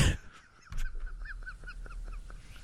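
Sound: seagull calls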